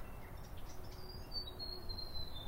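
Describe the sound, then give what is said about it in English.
Faint, high bird calls drift through a quiet native forest at Rickerton Bush (Pū Tarangamōtu) in Christchurch, with brief chirps and a thin sustained whistle over a low ambient rumble, soft. “I would come here to Pū Tarangamōtu, Rickerton Bush, the only piece of native forest left in Ototahi, Christchurch, and experience some bird life and nature and stillness for myself.”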